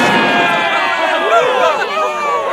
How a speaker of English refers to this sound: The travellers followed the row of tents until they emerged into the busy market square. Vendors sold their wares of warm food and clothing, and entertainers performed for the crowds.